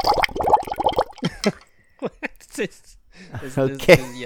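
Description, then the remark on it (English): A voice imitates splashing water with a run of gurgling, sputtering mouth noises that rise and fall over a few seconds, fairly loud, ending in a bubbly burst. “The grand water entrance.”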